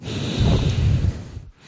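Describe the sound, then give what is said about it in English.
A loud, rushing breath blown straight into a microphone worn by the neck, a rough low-heavy whoosh with wind-like buffeting that lasts over a second, then cuts off abruptly into near silence. “I was trying to breathe into my microphone.”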